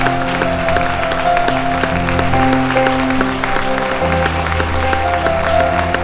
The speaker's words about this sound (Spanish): Vamos, si le va un aplauso al Señor, dáselo fuerte, dáselo fuerte.